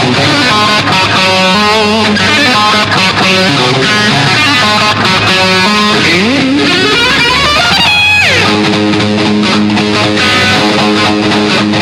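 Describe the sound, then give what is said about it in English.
Loud, distorted electric guitar riffing on an isolated track without production or reverb, with squealing pinched harmonics, bright high-pitched overtones that scream above the chugging tones, including a rising and falling whammy-bar swoop midway. “Pinched harmonics.”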